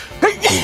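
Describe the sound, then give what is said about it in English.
A single sneeze: a short sharp intake followed by a loud, breathy burst, heard alone with no talking. “Gesundheit.”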